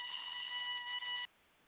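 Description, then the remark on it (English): A phone ringing with a bright, steady electronic trill as an outgoing call goes unanswered, holding an even loud tone for just over a second with a slight dip near the end before it cuts off abruptly into quiet. “Oh, still ringing.”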